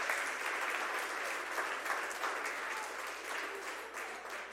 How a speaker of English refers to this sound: I'd love it for the families that are participating right now for child dedication to just come forward. You can come line up in front of this stage. Let's clap for them as they come up.